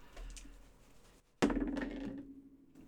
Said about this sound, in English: So we're going to start off by having you guys roll a d20, and this will determine your characters.